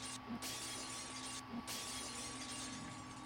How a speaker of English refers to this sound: Then she broke the glass windows one after the other.